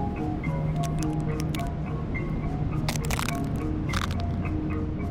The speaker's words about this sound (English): I stomp on dried up crab shells because I like this satisfying sound they make and it reminds me a little bit of heartbreak.